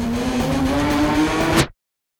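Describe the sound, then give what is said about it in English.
A loud monster truck engine, the Irish Elk monster truck at the fairgrounds, revs steadily with a deep, rising growl for under two seconds, then cuts off abruptly into silence. “The Irish Elk, as it uses its big horns to ward away any other monster trucks who may be nearby.”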